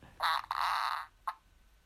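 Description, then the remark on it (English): A strained, hesitant fart: a short sputter, then a longer buzzy squeeze, followed after a pause by one brief final puff, with no talking. “That's when you try and force one out to try and be funny.”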